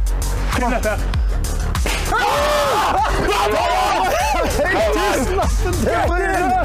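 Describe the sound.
A group cheering loudly over cash prizes won, many excited voices shouting and whooping over one another with rising and falling pitch, a dense, continuous burst of celebration from start to finish.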